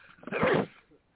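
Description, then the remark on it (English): A single sharp sneeze bursts out, lasting under half a second before fading into quiet, with no talking around it. “excuse me. Bless you.”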